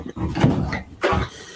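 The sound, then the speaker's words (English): A cat knocking on a door: two dull, uneven thumps about a second apart, moderately loud, with a muffled rattle and some low murmuring sound between them. “My cat was knocking on the door.”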